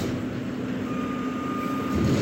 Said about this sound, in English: I'm watching the garbage truck on Pearl Street. Empty dumpsters.